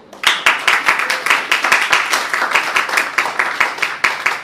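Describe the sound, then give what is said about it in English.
A crowd breaks into steady, rhythmic applause for those who increased their pledge, many hands clapping together in a dense, sustained wash with sharp recurring peaks, loud and without any talking over it. “For those that increase their pledge, to the call that we called, you deserve a round of applause.”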